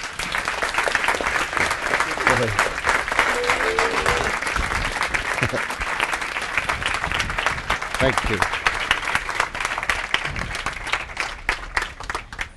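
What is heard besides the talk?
audience applause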